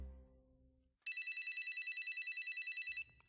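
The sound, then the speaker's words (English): A cell phone rings loudly with a bright, rapidly trilling electronic tone that holds steady for about two seconds after a low rumble fades out, then cuts off abruptly. “And we'd appreciate you turning off your cell phones while we wait.”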